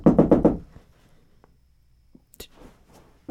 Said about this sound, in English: I'm going to sit and wait on the porch. When he comes up, I'm going to knock on the door twice.